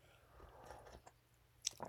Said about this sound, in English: I'm gonna take a sip of coffee real quick because some addictions you just never get rid of.